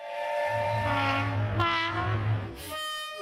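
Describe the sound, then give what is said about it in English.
A train horn blares in steady chords over a low, continuous rolling rumble of a passing train, fairly loud, with the rumble fading near the end while the horn tone holds. “So let's kick it off with the lame train.”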